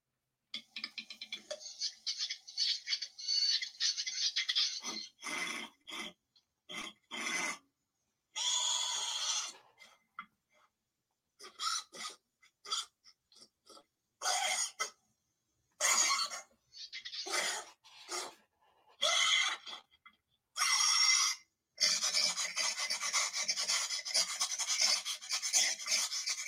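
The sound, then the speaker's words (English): Reconstructed velociraptor vocalizations: raspy, breathy sniffs and snorts, opening with a long hissing rasp, then quick irregular bursts of sniffing, ending in another sustained raspy hiss. Fairly loud, no talking. “That sounds like some kind of sniffing.”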